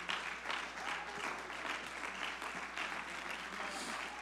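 An audience claps their hands to the Lord in praise, sustained and dense, many hands at once steadily for several seconds with no voices standing out.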